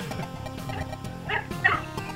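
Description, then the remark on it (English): A dog barks and yips in a quick series of short, moderately loud bursts, with two sharper barks standing out near the end. Nobody speaks. “Wait, woof, woof, woof, woof.”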